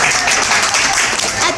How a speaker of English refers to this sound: You can clap, you guys.